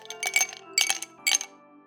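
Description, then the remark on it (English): Ice cubes drop into a glass in three quick bursts of bright clinking and rattling, fairly loud, each followed by a short ringing tail. “It was ice being dropped into a glass.”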